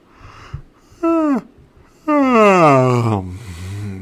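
A soft, dull knock of a drink glass clanking, then two drawn-out voiced yawns. The first is short, the second longer and louder, both sliding downward in pitch and trailing off into a low murmur.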